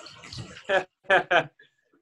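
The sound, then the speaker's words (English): Water runs into a bathtub to top up a bath that is getting too cold, with a steady, splashy hiss at the start, then a voice speaks a few short bursts over it before the sound fades into quiet. “Let me add some water as this is getting a little bit too cold.”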